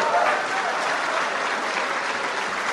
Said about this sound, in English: They're clapping. These people are clapping at the dishonest media. This is the CIA.